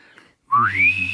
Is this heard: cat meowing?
no